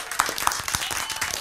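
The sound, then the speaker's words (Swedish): A burst of applause from a group on radio station Ice FM: dense overlapping claps forming a steady, fairly loud wash of sound that continues throughout without a break. “Det var några riktiga applåder. Det var en ordentlig applåd.”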